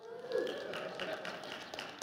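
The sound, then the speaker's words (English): An audience applauds for the last Sunday of 2020, scattered claps blending into a soft, steady patter for about two seconds, with a faint hum of voices and a sustained tone underneath. “And how about an applause that this is the last Sunday of 2020, huh?”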